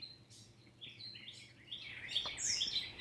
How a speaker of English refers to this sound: And you might notice in listening to bird songs that your ears become focused on one particular bird. And that bird will sing for a while.